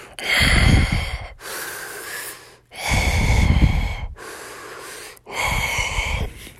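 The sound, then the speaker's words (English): A voice imitates heavy breathing in a big, dark cave, loud: slow, raspy breaths alternating between deep rushing exhales and thinner, hissy inhales, about five breaths in a steady, menacing rhythm. “And they could hear a voice breathing.”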